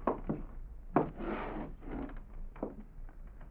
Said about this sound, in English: Then I heard somebody coming down the hall outside my door. I thought for a moment they might be going past. But then...